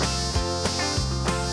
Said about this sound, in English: Right, the mosquitoes go as they buzz around your ear.